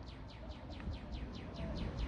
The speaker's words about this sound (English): It's as frustrating as this damn bird that I wish I had a fucking BB gun to blow its beak off. It's as frustrating as that.